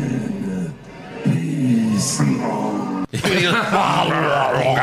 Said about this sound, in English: It was Taker doing his growl, like his terrible growl. Hold on, let me play it one sec. I don't know. I don't care. Rest. Listen for the growl.